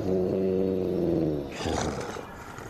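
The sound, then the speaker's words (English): A deep, rumbling, contented animal growl holds steady for about a second and a half, fairly loud, then trails off into a breathy, rasping exhale. No one speaks. “Growls contentedly.”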